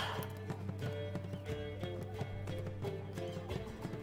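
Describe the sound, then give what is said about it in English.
Steady, clopping footsteps approach from a hill at a regular pace, fairly loud, as figures make their way down the hill toward a wagon, over a continuous bed of layered, droning music with no talking. “you hear footsteps approaching from the hill as you see slightly salty looking Kiva and Esmeralda making their way down the hill toward the wagon.”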